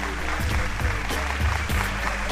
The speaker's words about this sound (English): They just won't stop applauding.